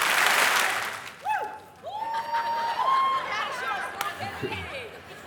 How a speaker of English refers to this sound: When something really good happens, coach always screams, "Give me three claps." So when I tell you, "Give me three claps," I want us to do three claps all at the same time. Give me three claps.